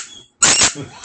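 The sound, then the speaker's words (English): A squeaky pig toy is squeezed, giving a thin high squeal, a short pause, then a louder, harsher squeak that trails off. “You're the fucking squeaky toy pig.”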